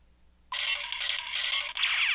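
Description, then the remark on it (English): A small pocket sound-effect toy with clapping and whistle effects, set off accidentally by an elbow, suddenly goes off after a brief quiet moment, blaring a bright, hissy, crackling electronic effect that runs steadily with one short break. No one speaks. “I bought her like a little pocket sound that has like clapping and whistle and.”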